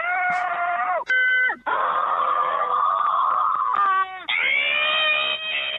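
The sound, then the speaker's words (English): A montage of different people screaming into a voicemail phone line whose recordings go to the Just Scream Baby website, one loud, drawn-out shriek cut straight into the next, with a thin, tinny telephone-like quality and no talking. “But people can scream into this voice recording, and I have a montage of the screaming.”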